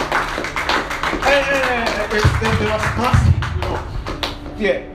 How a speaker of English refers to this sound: I thought you clap your hands for Jesus.